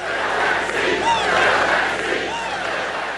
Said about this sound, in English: One night after the Supreme Court announced the death of Ruth Bader Ginsburg, this was the sound at a rally held by President Trump in Fayetteville, North Carolina.